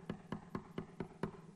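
Someone knocks again on the door of a house: six quick, evenly spaced knocks, steady in rhythm and moderately quiet, with a hollow thud to each rap and no voices.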